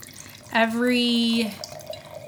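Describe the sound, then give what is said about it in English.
Middle Sister Mischief Maker wine glugs into a glass in a single pour lasting about a second, with a bright ringing tone that rises in pitch as the glass fills, then stops abruptly. “I'm gonna need your glass, miss.”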